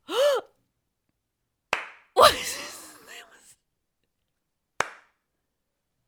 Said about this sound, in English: Slow clap. Yeah. Yeah, that's how I felt about half of my shows this past week.